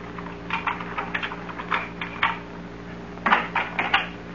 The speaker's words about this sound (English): Listen. What is it? Thought I heard footsteps outside the house. Footsteps? Just listen.